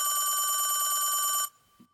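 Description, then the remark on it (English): A loud old-fashioned telephone bell rings in a continuous rapid metallic trill for about a second and a half, then cuts off abruptly, leaving near silence with a faint thump. “I love how he has the old school phone and everything. Yeah. Oh, it's loud. It's really loud.”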